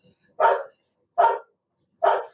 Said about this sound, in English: I don't know what the heck was barking for.